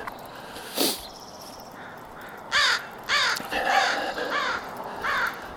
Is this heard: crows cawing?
yes